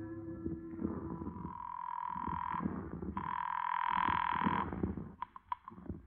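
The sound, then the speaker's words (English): A call from a hotel room phone to the Boston police rings twice through the line, each long buzzing ring lasting over a second, over a low rumbling background, followed by a few sharp clicks as the call connects. “But I wasn't exactly cooing when I got to my hotel room phone and put a call through to the Boston police.”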